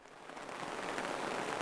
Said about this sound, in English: Oh, crap, it's raining.